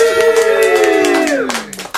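A small group claps in scattered, overlapping bursts while a sustained, harmonically rich tone slowly slides downward beneath them, fading out near the end as the applause continues.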